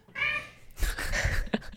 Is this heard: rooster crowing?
no